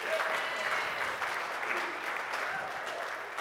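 An audience applauds with steady, dense clapping that holds at an even level throughout, a continuous wash of many hands with no gaps or voices standing out.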